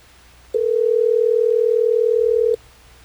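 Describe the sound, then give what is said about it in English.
A steady telephone dial tone hums for about two seconds at a constant pitch and loudness, then cuts off abruptly, with only faint background noise before and after, as a call is placed on the Hot 101.5 radio show in Tampa Bay. “We're going to get her on the phone and see what's going on.”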